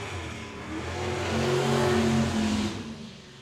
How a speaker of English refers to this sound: So that was the loudest thing on this podcast, according to the software here, by far. That was a car. That was a car, yeah. Pretty much the way we live. We're downstairs, windows open, you can hear everything outside, and there's just a loud monster